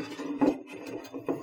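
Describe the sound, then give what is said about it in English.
Beer pours slowly into a Das Boot boot-shaped glass with a steady, rough trickle, swelling into two brief louder gushes as the flow splashes and fizzes. “I'm kind of nervous to pour this.”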